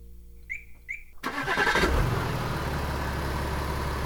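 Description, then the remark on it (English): Two quick electronic chirps, then a car engine cranks and catches with a loud roar before settling into a steady running rumble, as a housemate's car is started at night. “And I stole my housemate's car.”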